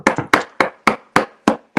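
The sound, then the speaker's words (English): Eight sharp, solid knocks from the babysitter rap against a wooden door in a steady rhythm, the first two coming quickly together, with no voices heard. “I think there's a knock at my door.”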